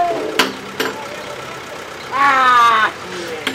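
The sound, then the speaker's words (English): A truck engine runs steadily at a busy scrap metal yard in an industrial area of Little Village, with two sharp metallic clanks early on and a louder, rising whine as it revs for nearly a second before settling back. “Cars loaded with metal are going in and out.”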